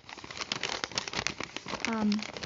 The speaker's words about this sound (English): Sorry, I'm gonna throw this all these notes away when I'm done. So that's why you hear paper crumpling.